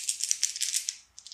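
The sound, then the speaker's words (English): A set of dice rolled for critical attack damage rattles and clatters in a quick burst of crisp, bright clicks, thinning out briefly before a few more sharp taps at the end, with no voices; the first set totals 25. “25 from the first set of dice.”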